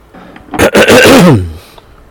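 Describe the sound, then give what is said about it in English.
A single loud cough from a man speaking, with a rough, voiced throaty tail that drops in pitch, standing alone in an otherwise quiet moment. “I guess I need to get a cough button.”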